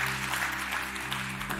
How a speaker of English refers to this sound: No claps. That's okay. That's all right. Two claps.